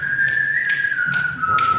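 A college whistling a cappella group whistles one long, steady, sustained note together in unison, fairly loud, with soft rhythmic tapping beats underneath roughly every half second. No one speaks.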